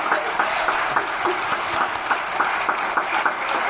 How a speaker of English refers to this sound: Getting cheering back here.